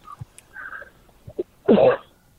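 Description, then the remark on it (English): A caller from area code 417 gives a single loud, harsh cough over a phone line during a live call-in broadcast, preceded by a few faint clicks and small noises; no one speaks. “Hello, cough.”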